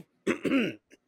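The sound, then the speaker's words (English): A fairly loud cough lasting about half a second, harsh and rough like clearing the throat, followed by a faint short catch of breath. No one speaks. “I was coughing.”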